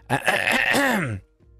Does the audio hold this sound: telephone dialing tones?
no